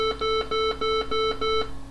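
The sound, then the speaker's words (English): Six loud electronic computer beeps signalling the completion of a backup, in a steady, evenly spaced sequence, each a short buzzy tone with a slight pause between, then silence. No one speaks. “Completion of the backup was signalled by six loud beeps.”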